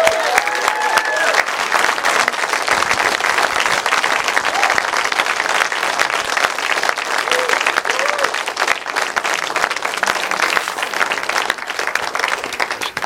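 An audience applauds steadily, a dense wash of many hands clapping at once, loud and sustained for over ten seconds, with faint cheers and voices mixed into the crowd noise.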